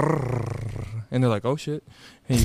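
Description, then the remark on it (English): A person imitates a big cat with a low, rumbling growl for about a second, fairly loud, then breaks into quick, excited talking. “If you go, grrr, grrr, grrr, they go”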